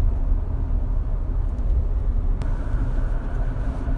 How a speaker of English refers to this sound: So sorry guys, the sound of the truck or the recording is in the truck, and it sounds kind of trucky, doesn't it? You can really hear it. Yeah, there's a lot of distortion.